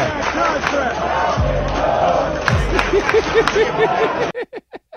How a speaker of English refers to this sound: Yes, the crowd goes wild there.